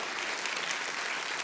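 audience applauding

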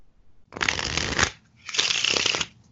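playing cards being shuffled

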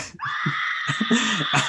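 person screaming in excitement

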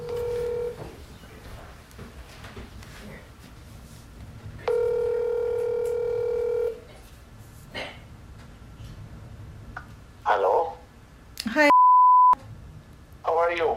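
phone number being dialed

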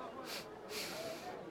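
sniffing the air

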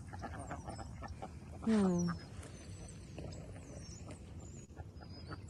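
ducks quacking

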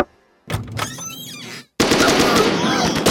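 gunshots

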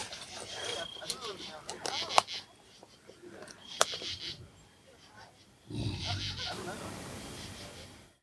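growl

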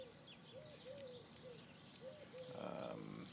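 birds calling

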